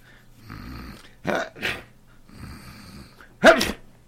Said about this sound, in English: Gesundheit.